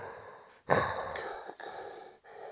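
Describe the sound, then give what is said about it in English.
A voice imitates Darth Vader's heavy, mechanical respirator-mask breathing: a few long, hissing breaths in and out, steady, with brief pauses between them and no talking. “You talk normal, but you just breathe like him.”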